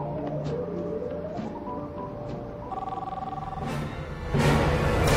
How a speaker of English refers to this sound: Phone's ringing, dude.